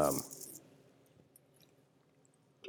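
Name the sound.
sipping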